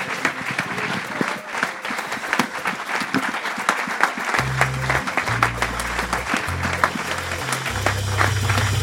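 A live audience applauds steadily for a storyteller at the end of the night's show, dense clapping filling the whole stretch, and about halfway through a deep, bass-heavy music bed comes in beneath the ongoing applause.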